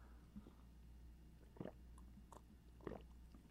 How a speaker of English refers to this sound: Can you hear me swallowing? Can you hear me swallowing on the microphone there?